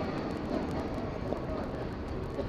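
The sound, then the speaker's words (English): A tram rumbles and grinds along its rails over a bridge overhead, a steady, dense roar that holds at an even loudness throughout, with no voices. “I hear a tram grinding over too, I think.”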